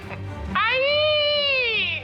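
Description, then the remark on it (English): Princess Peach's high-pitched scream, one loud sustained cry lasting about a second and a half that rises slightly, holds, then sags and fades, with a faint brief sound just before it. “Exclamation points emerge over Mario and Luigi's heads as they dash off in the direction of Peach's scream.”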